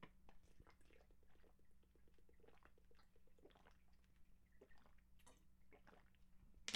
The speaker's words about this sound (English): The cool thing about that, if you don't know Kingdom Hearts lore, let me get a drink of water one sec.